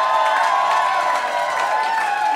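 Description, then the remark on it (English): A crowd applauds and cheers, a dense, steady wash of clapping with higher whoops mixed in, holding at the same loud level for a couple of seconds. “And now, guys, hold your applause. Hold your applause, because it's boring this year.”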